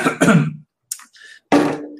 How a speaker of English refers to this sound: Sorry, went down the wrong pipe. Not the COVID, folks.